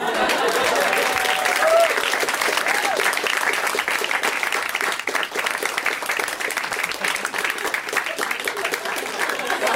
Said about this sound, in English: Huge round of applause as you would for a man.